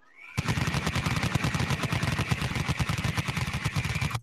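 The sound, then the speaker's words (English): A loud burst of rapid-fire gunfire, a continuous stream of sharp, evenly spaced shots rattling off for about four seconds after a brief rising whir at the start. “Get the cannon spinning.”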